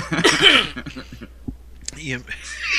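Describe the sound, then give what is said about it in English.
Harsh, sputtering coughs after choking on coffee, a few rough bursts mixed with throat-clearing and strained voiced sounds between them. “I got a cough because I choked my coffee up on that one.”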